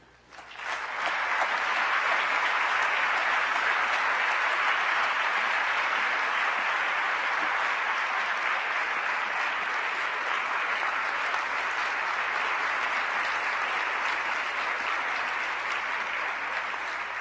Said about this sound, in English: Thank you very much. With such a gracious introduction and an abundant applause, I ought to quit while I'm ahead.